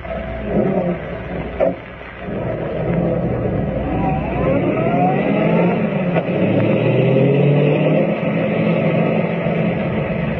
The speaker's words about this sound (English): We're driving up to the old mine. Good. We'll catch him. Now, here. Here's my car. Get in.